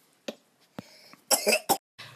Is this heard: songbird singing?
no